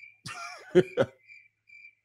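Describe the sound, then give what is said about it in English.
Short bursts of cricket chirping, high and thin, sound in isolated trills at the start and end, with a loud cough-like vocal burst in between. “It'll be crickets.”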